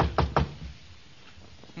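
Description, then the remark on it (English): Two quick, sharp, crisp knocks on an office door early in the morning, followed by a stretch of quiet room tone. “Knock on the door here.”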